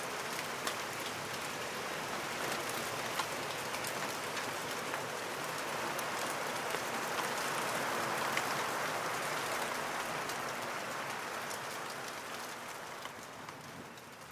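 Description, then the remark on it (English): Heavy rain pours steadily at a site with lakes, a dense, continuous hiss of drops striking surfaces, swelling slightly in the middle and easing a little toward the end, with no voices. “The heavens open, and in the distance, I spot a family of grey heron hunched over in the rain.”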